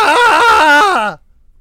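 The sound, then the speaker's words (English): A single loud, wavering scream from one person, held for about a second with a quivering pitch before dropping off abruptly into silence. “I screamed and then moved my thing away the fuck up there.”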